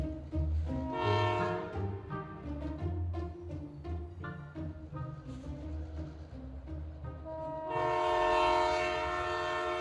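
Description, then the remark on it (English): A train rumbles steadily past with a loud horn, sounding once at the start and again in a long blast near the end. No one speaks. “Okay, now that creepy McStalker is headed for the end of the line, I can figure out where I'm going.”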